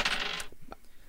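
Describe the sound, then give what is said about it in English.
A fairly loud burst of hard rattling, then a few sharp clacks as dice rolled in a game, aiming for above 10, bounce and settle on a hard table. No voices are heard. “Come on, dice, above a 10.”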